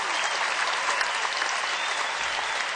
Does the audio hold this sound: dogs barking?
no